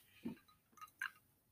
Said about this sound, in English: Oh, hard to hear the ice cubes in there. You can tell it's winter. But we're enjoying a rum and Coke tonight.